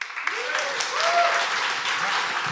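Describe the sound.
The MacFest comedy festival audience applauds steadily to vote on who is in the right, a dense wash of many hands clapping at once, with some cheering and a few raised voices woven through the noise.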